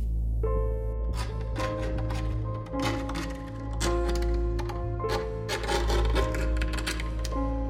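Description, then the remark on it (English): At night, irregular, rapid scratching and clicking on wood below a bed, beneath the bedroom floorboards, coming in uneven bursts over a steady low droning hum with sustained tones. No voices. “I wake up and I don't know what woke me up, but soon after I wake up, I hear the sound of scratching on wood below the bed, echoing up through the floorboards.”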